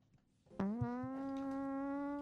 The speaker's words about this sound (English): Sorry, I farted. That was not me, though. That wasn't her. No. That was a sound effect.